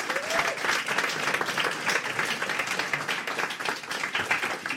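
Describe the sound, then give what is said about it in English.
A crowd applauds steadily for a volunteer from the audience, many hands clapping in a dense, continuous wash that holds at an even level for several seconds, with a brief vocal whoop near the start. “Round of applause for our volunteer, please.”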